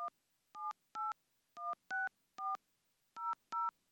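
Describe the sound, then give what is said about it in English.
A string of eight telephone dialing tones, each a short steady dual-pitched beep, pressed in an uneven rhythm with brief gaps between them, clear and alone with no talking. “I'm going to call her.”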